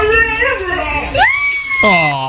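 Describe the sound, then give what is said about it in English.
A dog, taught by its owner to say the words after she talks to it, lets out a whiny, howl-like vocalization in about three drawn-out, pitch-sliding syllables, imitating the rhythm of someone saying "I love you." It is loud and plays on its own. “And then finally, this woman has taught her dog, everyone is convinced, to say the words, I love you, after she talks to the dog.”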